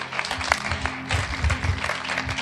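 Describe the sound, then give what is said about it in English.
An audience claps hands in a dense, continuous burst of applause lasting a couple of seconds, steady and moderately loud, with a low hum and some murmuring underneath. “Clap your hands for me.”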